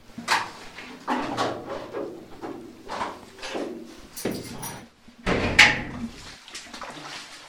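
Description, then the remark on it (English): A heavy metal door leading into a cave is worked open, with a series of clanks and scraping knocks, then a louder grinding clunk and a brief metallic squeal before it settles. “We have just gone through a metal gate and a metal door, and now there's another metal door in front of us, which you will have to go through.”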